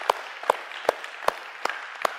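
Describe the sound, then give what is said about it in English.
An audience claps in a steady rhythm in praise of the Lord during a morning service, sharp hand claps landing about twice a second over a diffuse wash of crowd applause, with no voices. “If you believe that, give the Lord a hand clap of praise this morning.”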